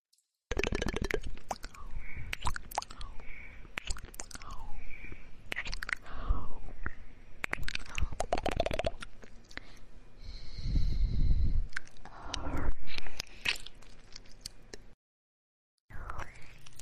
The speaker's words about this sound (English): This is another one. I'm just chewing on a microphone. Apparently, there's a lot of left channel going on, too. A lot of left ear sucking.